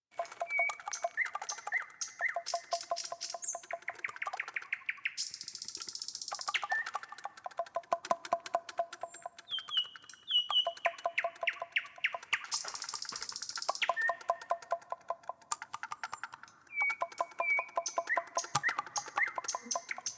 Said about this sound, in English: This is like almost the end of the first year we were playing music live with Nightingales. This track actually comes from Helsinki